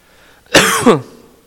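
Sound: coughing and throat clearing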